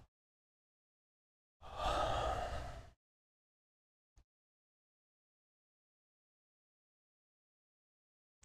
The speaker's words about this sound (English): One of my favorite things when we get into these deeper holds is yawning, just letting the jaw open wide. That helps relax the nervous system too.